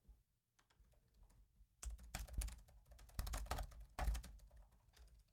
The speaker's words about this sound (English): I love your typing. It has a very aggressive. I wish I had my keyboard instead of this little laptop one.